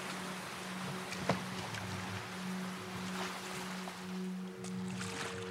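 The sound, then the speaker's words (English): A boat sets out across a lake, with a steady low engine-like drone, lapping splashes and a brief knock near the start; no one speaks. “So they got into a boat and set out.”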